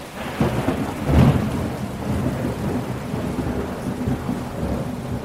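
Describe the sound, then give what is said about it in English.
Heavy rain pours steadily in a dense hiss while a deep roll of thunder rumbles loudly about a second in, then fades back into the constant downpour. No voices. “And worse, climate change has intensified the rainy season, and more rain has meant more floods.”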